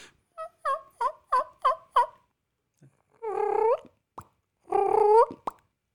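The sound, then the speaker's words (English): A person imitates a turkey by mouth, without a diaphragm call, with a quick run of about six sharp clucking putts, then two longer, warbling turkey-like calls, fairly loud with short silences between. “That's more of a cluck. Yeah, or a putt. That's more of a warning sound, I guess.”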